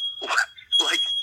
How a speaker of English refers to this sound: What is the smoke alarm going off for over there? Are you panicking? That house is under duress.